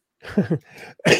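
A short coughing fit from a father: a few harsh, raspy coughs in quick succession, with a throaty rumble and a breathy pause before a final loud, forceful cough.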